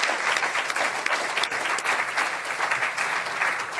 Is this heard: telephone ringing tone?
no